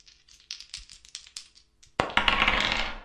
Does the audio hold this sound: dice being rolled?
yes